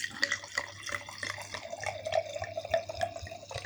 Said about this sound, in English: Now, as it's a red, you should really tip it into the correct shape glass, but obviously I prefer a bucket, so.